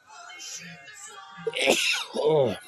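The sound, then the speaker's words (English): A single loud sneeze bursts out after a few seconds of soft, breathy build-up, trailing off into a short voiced groan. “Excuse me, I'm getting ready to sneeze.”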